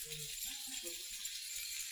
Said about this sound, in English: All right, you got any keys in your pocket? Anybody got any keys in your pocket? Get them out for a minute if you would. You might want to keep them. Now, do not lay them down and blame on me. I want to hear them for just a minute.